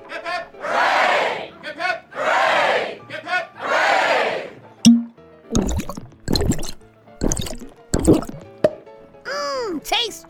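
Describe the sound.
A group shouts three loud, rousing cheers in quick succession, each answering a short lead call, followed by a few sharp pops and clinks with bits of talk.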